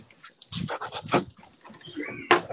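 A dog pants in quick, breathy bursts, mixed with a few high, thin whimpers and short whines, continuing steadily for a couple of seconds.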